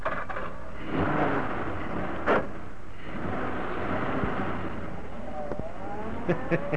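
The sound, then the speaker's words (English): A car engine rumbles low and steady after being started with an ignition key, with a brief clunk partway through, then revs rise as the car, carrying two men, pulls away. No one speaks. “I hope that ignition key of yours works”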